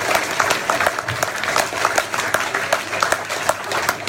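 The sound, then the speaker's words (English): A crowd applauds steadily for about four seconds, many hands clapping at once in a dense, even patter with no pause or swell, and no voices standing out above it. “And they deserve as much applause as everybody's going to give them.”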